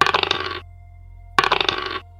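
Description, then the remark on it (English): Two short bursts of dice clattering and rattling across a hard table, each lasting about half a second and separated by a brief pause, fairly loud with no voices; the dice are rolled in a tabletop role-playing game, coming up a 3. “Mo rolls a 3.”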